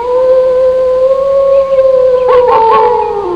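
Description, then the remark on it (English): A wolf howls in one long, sustained, mournful note that holds steady and then wavers and dips toward the end, loud, with no one speaking. “Don't tell me that's a wolf.”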